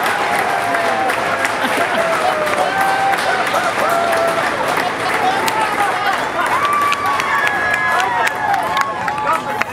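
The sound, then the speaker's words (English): An outdoor crowd of family and friends applauds steadily for about ten seconds as four newly minted astronauts, including Mr. Bezos, exit their capsule; dense clapping at a constant loudness, with excited voices and shouts mixed in throughout. “And the applause is both here and there as they begin to, there they are, exiting the capsule.”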